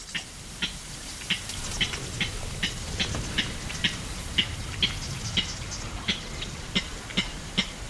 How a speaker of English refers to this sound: And that's when we hear the unusual cluck that gives clapper rails their name.